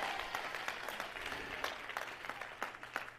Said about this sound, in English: Somebody clap your hands and shout yes!